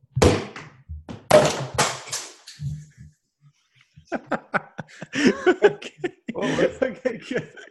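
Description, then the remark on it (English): A champagne bottle pops open with a few sharp, loud bursts and a brief hiss, then a pause before a group breaks into laughter and excited chatter. “Okay, so let's open a champagne bottle.”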